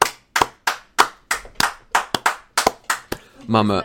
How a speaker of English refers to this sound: Let's get a round of applause for Tuna. For Tuna and for everyone else.